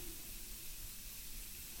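A continuous, soft hiss of spray runs steadily for a couple of seconds, fairly quiet, with no talking over it, as spray is put on a person's lips, with their eyes covered, before lip filler injections.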